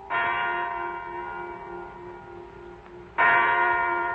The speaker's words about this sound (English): A big clock jangled its snooze that the time was 9 o'clock in the morning.